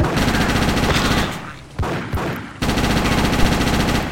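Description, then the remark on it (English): Rapid automatic submachine gun fire from a video game as the SMG runs out of ammunition, a dense rattling burst that briefly breaks off midway, then resumes at full loudness and continues steadily to the end. “Oh, my SMG running out, bro.”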